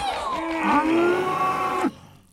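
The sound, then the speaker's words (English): A single drawn-out moo from a pregnant cow, a steady mid-pitched bellow rich in harmonics that holds for almost two seconds, rises slightly, then cuts off abruptly into quiet. “Hang on, there's a calf in here. This cow was pregnant.”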